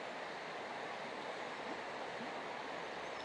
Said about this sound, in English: Okay, there are two rivers here. I see, I'm learning stuff here. I'm here. I'm at the point where the Glenmore River and the Butlerstown River have just met. And the Glashnaboy River is formed.